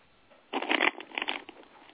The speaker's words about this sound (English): while I shuffle.